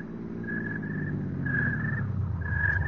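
A car engine rumbles, its low drone growing slightly louder, with a few brief high squeals like brakes as it drives up to a house and slows.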